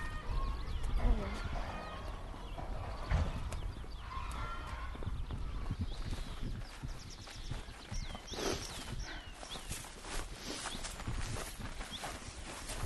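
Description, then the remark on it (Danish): Chickens cluck and squawk close by in a busy outdoor yard, with scattered footsteps or hoof-like clopping and faint voices in the background. “Hvad er det, man kan høre? Jeg tror, det er hønsene herovre.”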